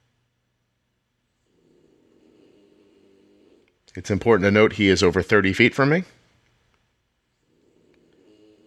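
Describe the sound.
Faint snoring in two soft stretches, with a man briefly speaking in between.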